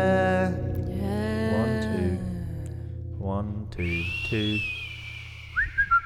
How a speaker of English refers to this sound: This is where everyone finds out I can't whistle.